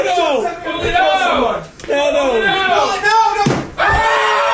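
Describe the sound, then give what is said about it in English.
Several men shriek and yell in loud, frantic bursts over a running spider, and a sharp crash of a picture knocked off the wall cuts through the screaming near the end. “They knocked a picture off the wall and the spider's running.”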